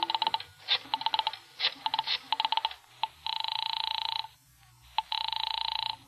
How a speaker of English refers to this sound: I remembered there was a phone someplace, too, and I found it and crawled over to it. Started dialing my number.